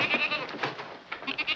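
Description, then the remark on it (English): A female goat bleats in a series of wavering, nasal cries, moderately loud, with short breaks between calls and no talking. “How could you let that goat just walk around free?”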